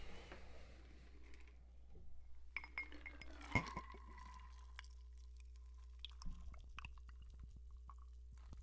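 A shaken drink is poured into a glass, with bright clinks of glass and ice followed by soft trickling and a few scattered taps. No one speaks.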